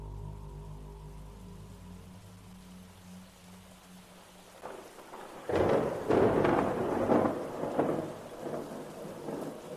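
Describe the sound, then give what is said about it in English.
A low rolling rumble of thunder builds, then breaks into loud, crackling claps over a steady roar of heavy rain at night, intense with no voices. “Looks like it's gonna rain to beat all hell tonight.”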